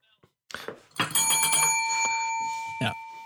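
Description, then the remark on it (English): A bell is banged and rings out sharply after a few clattering knocks, its bright metallic tone sustaining and slowly fading over a couple of seconds, clear, with another brief knock near the end. “Bell, bell, bell.”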